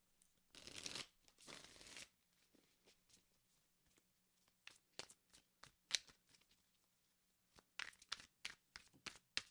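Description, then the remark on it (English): Two long riffling bursts of tarot cards being shuffled, followed by a series of short, sharp snaps and flicks as cards are drawn and laid down, fairly quiet with no talking. “I actually ended up pulling three also because I'm the worst.”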